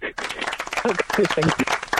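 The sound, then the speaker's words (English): A short burst of applause sound effect, dense and steady clapping for about two seconds, with voices or cheering mixed in over the top. “and it went so well it stuck, and that's my round of applause right there.”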